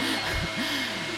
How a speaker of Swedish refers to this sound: Nej, det är ju en lövblås. Nu gick han iväg. Lövblåsar som de älskar här i USA mer än något annat.